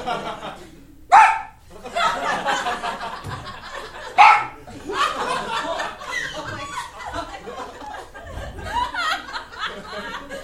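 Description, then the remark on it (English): A man imitates a dog with two loud, sharp barks a few seconds apart, while a crowd murmurs and laughs throughout. “One is that I also always bring up that I can bark like a dog.”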